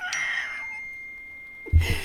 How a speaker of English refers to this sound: I think my phone just went off. Sounds like that one was the winner. That was the winner.